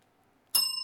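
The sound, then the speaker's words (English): A single bright bell ding, rung to mark a correct pick that the iPhone Pro would come in at least one new color, strikes suddenly after near silence, its clear metallic tone ringing on steadily without fading much. No voices are heard. “Rang the bell for myself.”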